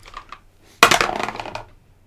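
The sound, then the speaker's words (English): Dice clatter onto a hard tabletop with a sharp burst of rattling clicks that tumble and fade over about a second, fairly loud, preceded by a few faint light taps. “Now let's see if you woke him up. Dice.”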